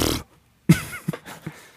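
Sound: voice imitating a horse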